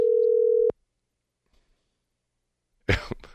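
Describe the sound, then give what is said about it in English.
A loud, steady telephone dial tone, heard while placing a call, hums for under a second and cuts off with a click, followed by near silence and then a brief cough. “I got the number. Do I dare do it?”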